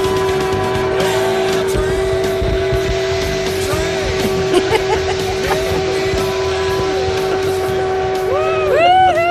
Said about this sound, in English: Those were brakes, I think.